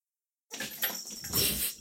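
After half a second of silence, cats make a scratchy, breathy stretch of noise that runs unbroken to the end, fairly soft, with a few thin high-pitched tones mixed in.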